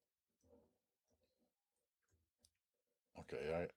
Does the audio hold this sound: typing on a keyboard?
yes